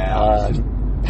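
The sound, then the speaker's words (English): A brief electronic lane departure warning tone sounds inside a car, a short harmonic chime fading quickly over a steady low rumble of road and engine noise. “We're being told to get back in lane.”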